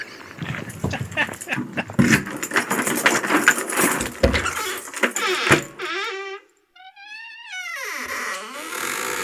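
A bunch of keys jangles and clatters for several seconds, then stops, followed by high, squeaky, whining animal-like sounds.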